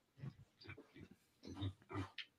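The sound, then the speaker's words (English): A big pig grunts repeatedly while being fed M&Ms, a quick series of short, low, snuffling grunts in an uneven rhythm, the last few louder and rougher, with no talking. “Oh, and here comes oh, the shit. Big pig.”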